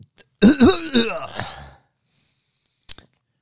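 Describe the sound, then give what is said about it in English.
A voice makes a drawn-out, rasping throat-clearing sound that trails off, followed after a pause by a short, sharp cough-like burst. It is moderately loud, with no words spoken. “Her cough, start coughing all over everybody.”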